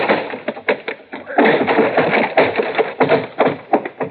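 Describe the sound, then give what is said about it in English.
A door being broken down: a rapid series of heavy blows and thuds, with a dense stretch of crashing and splintering noise in the middle, loud throughout with no talking. “All right, Woolman, open up this door, I'll break it down.”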